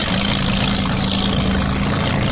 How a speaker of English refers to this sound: The sea sled can hit a speed of over 40 knots because they're equipped with, you guessed it, airplane engines. These boats speed across the Seattle waters with deafening noise.